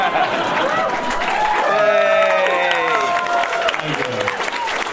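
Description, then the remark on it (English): An audience claps steadily for several seconds after a song, a dense wash of applause mixed with cheering and voices rising over it, fairly loud and sustained throughout. “That was beautiful, and it's always beautiful when you can get an audience to applaud for not singing the rest of the song.”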